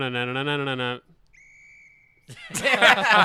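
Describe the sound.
A single short whistle made with the mouth instead of a real whistle, during the NBA Impressions segment theme, a thin steady tone lasting under a second, set between a sung vocal note before it and loud, excited voices after it.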